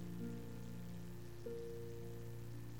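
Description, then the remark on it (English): A steady, quiet wash of rain-like noise runs unbroken throughout, layered over a low droning hum with faint tonal pitches, like an air conditioner. No voices are present. “I can't tell if that's the air conditioner or rain, but if it's raining, there's no place to go anyway.”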